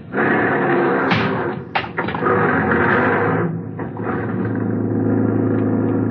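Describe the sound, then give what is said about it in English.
A taxi cab's engine rumbles steadily as it drives through heavy traffic at night, with a couple of sharp thuds early on, like a door shutting. A constant, fairly loud background with no voices. “Outside, I hailed a taxi.”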